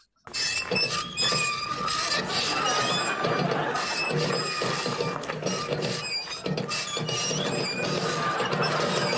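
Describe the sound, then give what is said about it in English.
A squeaky wheelbarrow pushed along a footpath at an allotment, its wheel giving repeated high, shrill squeals over a steady rattling, grinding rumble that lasts the whole clip at a fairly loud level. “And it's very squeaky.”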